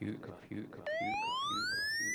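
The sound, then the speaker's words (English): A loud siren sound effect kicks in partway through, a single steady tone sweeping upward in pitch over a thumping, repetitive beat. “Got the siren.”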